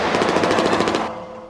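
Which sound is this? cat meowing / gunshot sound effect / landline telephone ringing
gunshot sound effect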